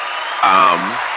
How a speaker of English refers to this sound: Oh, applause. So like I just walked into a sitcom.